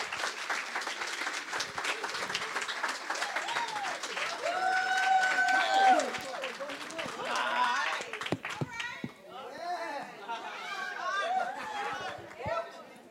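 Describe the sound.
An audience at a bilingual English and Spanish church service claps steadily for several seconds to welcome a speaker, a dense patter of many hands, mixed with crowd chatter, cheering and some children's voices.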